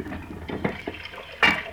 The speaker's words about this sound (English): Nice hot water in the pot, so it's warm.